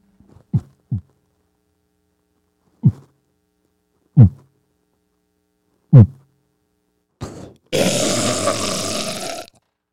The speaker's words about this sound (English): My heartbeat is 48. 48 beats a minute.